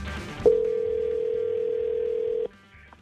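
A steady telephone dial tone as radio station New Country 103.1 places a call to a listener, humming loudly and evenly for about two seconds, starting abruptly and cutting off cleanly, with faint background noise before and after.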